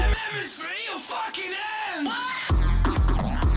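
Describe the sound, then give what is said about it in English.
A crowd at a DJ set cheers loudly during a pause in the set, with wavering whoops and yells rising and falling over a steady roar, swelling into a heavier burst of noise in the final second. “Little pause for crowd.”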